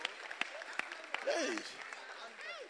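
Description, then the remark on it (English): An audience claps for God in a dense, steady wash of applause, with a few sharper individual claps standing out and voices calling and exclaiming over it. “Ah, clap for God that he will not remember your things again.”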